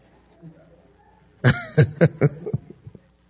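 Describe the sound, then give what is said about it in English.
After a brief near-silence, an audience member breaks into a rapid string of four or five loud, raspy coughs, fading into a few weaker hacks at the end. “Some of y'all already got choke. Go on and cough and say amen.”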